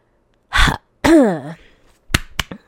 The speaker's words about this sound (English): Sexy, right? My throat. Anyways, sorry about that. Clear my throat.